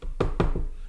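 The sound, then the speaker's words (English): Three quick, fairly loud knocks on wood, the last one a little softer, struck in a fast uneven rhythm with no voices. “And so far, it's knock on wood.”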